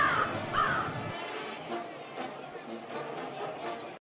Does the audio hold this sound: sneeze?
no